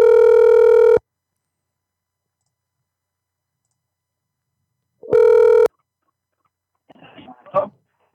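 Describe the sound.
Two loud, steady electronic phone tones, a long one then a shorter one after a gap of silence, as a call is placed to call someone back after the phone disconnected, followed by brief muffled speech.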